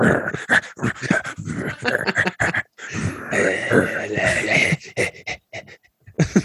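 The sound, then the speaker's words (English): A sleeping dog named Bowie pants steadily, rapid breathy rasps with brief whimpering sounds mixed in, filling most of the few seconds with short pauses between bursts. “A lot of panting.”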